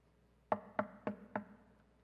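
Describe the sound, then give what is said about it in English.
During a church sermon, someone knocks four times by hand on a hard surface in a quick, even rhythm, each a sharp hollow thud that dies away fast, with no talking over them. “I was thinking of Jesus knocking, but man, that one really hurt.”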